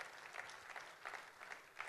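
A church audience in Lagos claps to welcome first-time worshippers, a dense, steady patter of many hands with bright crisp peaks recurring through the stretch, fairly even in loudness and with no voices standing out.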